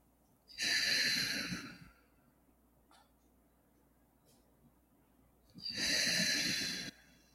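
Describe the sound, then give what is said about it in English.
Two long, deep cleansing breaths, in through the nose and out through the mouth, during a guided meditation, with a quiet pause between them, each a broad airy rush lasting over a second, against a silent background. “So just when you're ready, closing your eyes and taking some cleansing breaths in through the nose and out through the mouth.”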